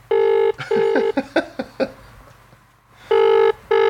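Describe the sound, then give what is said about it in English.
An outgoing call's ringback tone, placed at 8 o'clock on a Sunday night, buzzes in two short double pulses, loud on the line, with a brief muffled voice in the pause between them. “Well, Will he answer the phone?”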